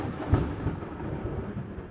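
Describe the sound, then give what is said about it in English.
A deep, rolling rumble of thunder from the first lightning of a storm directly overhead, sharpest near the start, then a steady low grumble that slowly fades over a couple of seconds, fairly loud with no voices. “That scared me because it's the first lightning and thunder that happened, which means the entire storm just happened directly over my head.”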